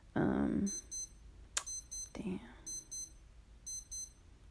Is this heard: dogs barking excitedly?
no